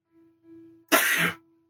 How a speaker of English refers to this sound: I'm about to sneeze.